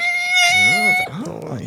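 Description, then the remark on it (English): A voice imitates a brake screech: a loud, shrill, steady squeal held for about a second, with a lower voice wavering underneath, then it breaks into a short stretch of vocalizing. “Brake screech.”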